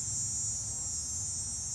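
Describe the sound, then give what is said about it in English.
A cicada's steady, high-pitched buzz drones on without a break, one unchanging note over a faint low rumble, with no voices. “This cicada is a fucking. He's a one note piece of shit.”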